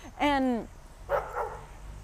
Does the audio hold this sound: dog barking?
yes